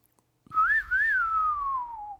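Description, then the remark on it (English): Someone whistles a film's two-note theme melody, clear, rising and dipping before sliding into a long, falling final note. No one speaks. “be able to whistle Ennio Morricone's theme tune with its unforgettable two-note melody, which I can quote for illustration thus”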